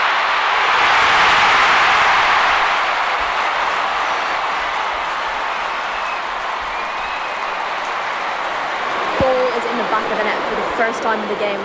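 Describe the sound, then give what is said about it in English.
Chelsea fans in a football stadium boo after a goal is ruled offside during a women's match, in a loud, continuous roar of many voices. It swells early, then holds steady for the whole stretch with only slight dips in intensity. “But it is ruled offside, and you can hear the booing Chelsea fans behind me.”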